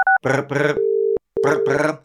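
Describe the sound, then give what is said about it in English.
A British landline telephone ringing tone in the double-ring pattern, two buzzy rings, a pause, then two more, with a steady tone between and a short beep at the start. “That's a British ringtone sounds like, by the way.”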